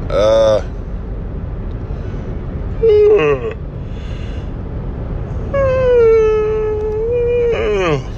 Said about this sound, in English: Sorry, big yawn.